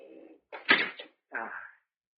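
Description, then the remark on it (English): A trap door opens with a short creak, a heavy wooden clunk, then a second drawn-out creak, all within about two seconds and with no voices. “Only you didn't know about this trap door, did you?”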